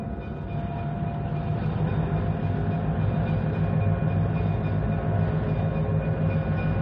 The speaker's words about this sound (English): Charlie, uncouple that locomotive, will you? Sure thing, John. Hey, Lamb. Yes, sir. Take the engine back to the yards.